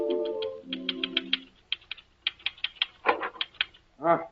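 A typewriter is busily pounded in Dr. Christian's office, clattering with quick, irregular keystrokes in short bursts, clear, while a few sustained musical tones fade out underneath at the start.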